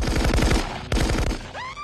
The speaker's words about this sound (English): Dude, what's going on? Did you pre-program gunshot sound? No, I think that's like actually happening.